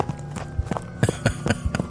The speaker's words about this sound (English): I duck behind a shrub, just as footsteps thunder past.